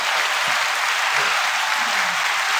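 A steady wash of audience applause, many hands clapping at an even loudness from start to finish, with a few faint low voices murmuring underneath.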